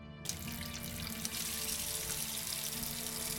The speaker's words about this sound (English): He fills up a pitcher of water to the right of the cooking pan.